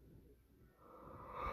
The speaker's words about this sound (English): I did a fake yawn to demonstrate a superhero yawn, and it literally made me yawn for real.